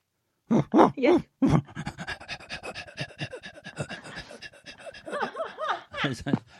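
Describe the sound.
A person imitates a dog panting: a few loud, breathy huffs, then a quick, steady run of rhythmic pants with some voiced, whiny tones near the end.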